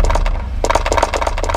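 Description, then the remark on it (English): Dice clatter: a quick burst of sharp clicks, a short pause, then a longer run of rapid hard taps as they tumble and settle on a surface. “Some more dice over the next 5 days as Solus continues to explore.”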